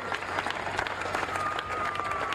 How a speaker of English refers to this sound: And as they say, the crowd went wild.